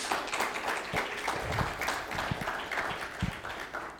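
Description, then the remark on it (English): A crowd applauds the Lord at the speaker's call during a bilingual Spanish-English Bible talk, many hands clapping in a dense, even wash of sound with a few sharper claps standing out, sustained for several seconds without any talking. “Démele un aplauso al Señor porque el Señor es bueno.”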